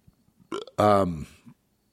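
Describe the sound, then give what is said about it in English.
A single loud burp on air during a broadcast, with a deep, resonant croak lasting under a second, preceded by a brief throaty onset, then silence. “I just burped there. Very rude on air.”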